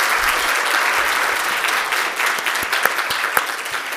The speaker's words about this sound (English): Yes, we can applaud that. We can. Yes. Thank you.